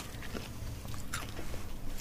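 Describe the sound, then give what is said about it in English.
Crunchy chewing of a peanut-centred candy, with repeated sharp bites and wet mastication sounds over about two seconds, no talking. “So chomp and chew and let me know what you got.”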